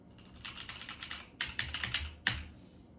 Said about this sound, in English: Okay, typing into Google now.